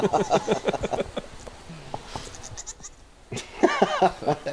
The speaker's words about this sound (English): I got the goats out here. You wanted to go for a walk around the estate, so we're walking around the estate. Here's the goats.